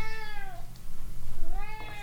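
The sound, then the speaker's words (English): A female cat, hungry while her feeding schedule is being changed, meows insistently, two long, drawn-out, whining cries separated by a brief pause, over a low, steady background hum. “Also, we're changing the cat's feeding patterns, and she has opinions. She is starving to death for the next 10 minutes.”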